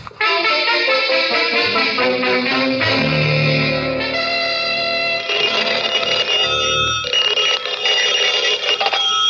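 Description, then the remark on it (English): A telephone rings loudly and insistently for several seconds, its bright metallic jangle blended with shifting sustained musical tones. No one speaks. “Oh, what's the idea of calling me?”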